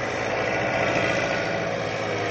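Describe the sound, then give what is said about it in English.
Heavy diesel engines of logging machinery, giant diesel cats and wheeled log rollers maneuvering to pick up and carry off log loads, rumble steadily with a dense low growl and broad mechanical roar, a continuous loud drone without pause and with no voices. “soon all of the latest logging equipment is in action. giant diesel cats and wheeled log rollers maneuver around to pick up their loads or carry off what they've already loaded on.”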